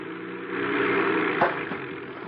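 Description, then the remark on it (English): A seaplane engine drones steadily as the plane taxis straight ahead on a lake toward a cliff just after landing. A continuous low hum with a faint rising whoosh and a brief bump partway through, with no voices. “I bring the plane down and land it on the lake.”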